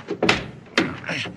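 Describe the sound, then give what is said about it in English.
A heavy sliding door being pulled back: two solid thuds, followed by a brief scraping rattle as the panel moves in its track. “Quit asking fool questions and slide that door back”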